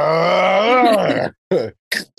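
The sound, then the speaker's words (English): A person voices the roar of a character named Baz: a long, strained roar with a rising-and-falling growl, then two short gruff bursts after brief pauses, loud and without other talk. “Yeah, Baz just roars and...”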